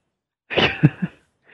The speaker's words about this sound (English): Sorry. I'm like sneezing over here.